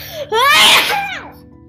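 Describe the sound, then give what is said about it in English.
A voice acts out a gumball sneezing: a rising, drawn-out vocal wind-up bursting into a loud, breathy sneeze, then trailing off into a falling, squeaky vocal tail. “The gumballs sneezing.”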